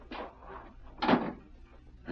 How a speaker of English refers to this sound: Shut the door